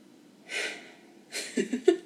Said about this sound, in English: Let's take a breather. Let's take a breath.